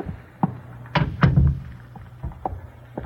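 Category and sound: household object, door being closed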